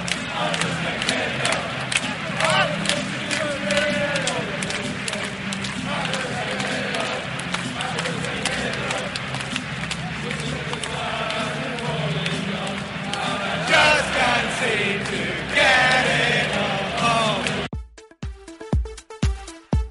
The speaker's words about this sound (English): And also, you can hear the fans loving it.